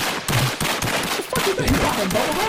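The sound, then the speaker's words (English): A thin, feeble gunshot sound effect: a quick series of sharp, crackly pops in close succession, fairly loud, with no voices. “This is the weakest gunshot of all gunshot time.”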